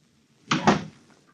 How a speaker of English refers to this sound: I don't like door slams. I don't like anybody slamming doors. That wasn't too loud. My house or my car. It was a nice little door slam.